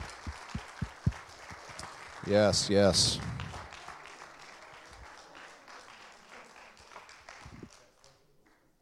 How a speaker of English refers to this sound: Would you just stand? I just want to say thank you, and you need a round of applause.